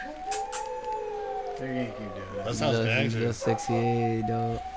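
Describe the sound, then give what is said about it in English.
Several dogs howl together in long, overlapping, wavering tones, the chorus rising and thickening midway and continuing loud throughout. “Dogs. That shit sounds dope. I know it sounds like some motherfucker werewolves in my ear”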